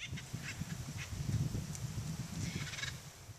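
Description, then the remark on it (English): Raucous acorn woodpecker calls ring out in several short, scattered bursts over a steady low rumble of background noise. “These native birds are easily recognized by their bold, clown-like markings and noisy calls.”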